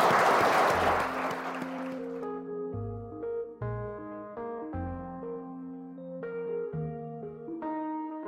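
A burst of audience clapping fills the first two seconds, a dense crackle that fades as a steady melodic music passage with plucked bass notes takes over.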